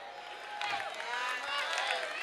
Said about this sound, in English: So while y'all clapping, that's good.